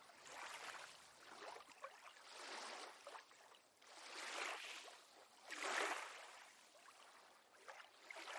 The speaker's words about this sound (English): You can hear the waves gently crashing on the beach.